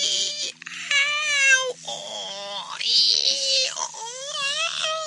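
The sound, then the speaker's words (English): A donkey, just stung by a bee, brays loudly in a long series of harsh, wheezing hee-haw cries, the pitch sliding up and down with each drawn-out breath, with no talking over it. “Then the bee goes stings the donkey. Not a very nice thing to do. And what a noise the donkey made.”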